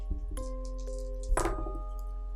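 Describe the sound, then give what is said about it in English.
Dice are rolled in a tabletop game, among them a six-sided d6. They clatter onto a hard surface in a few quick clicks and taps, then give one louder rattling tumble that settles after a moment, over a steady low hum. “With a 1, a 3, and a 6, will you roll a d6 one more time and not get a 1?”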